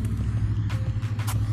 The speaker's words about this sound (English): No, like a million cars.